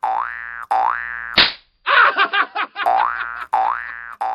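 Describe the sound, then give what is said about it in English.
A comedic 'Spring Hill Jack Slap' sound effect lands as one sharp crack, surrounded by wobbly cartoon boing tones and a brief clattering burst. Loud, with no talking. “Spring Hill Jack Slap for cleavage planes.”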